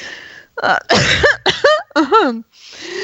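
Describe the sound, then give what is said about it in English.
A quick run of about four loud, raspy, voiced coughs, with a breathy inhale before and after. “It's not about the poster that I am coughing, you know.”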